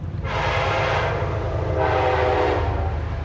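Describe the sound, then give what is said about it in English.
A train rumbles past on tracks along the Hudson River, its horn sounding in two long, loud blasts over the steady low roar of the wheels and cars. “Trains run on tracks on both sides of the river, and there are lots of barges, tankers, and pleasure boats on this busy waterway.”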